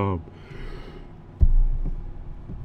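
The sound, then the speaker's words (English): A brief voiced groan trails into a soft, breathy exhale, like a yawn, followed by a low muffled thump and faint background rumble. “Man, I was doing so good I didn't have to get a yawn out tonight.”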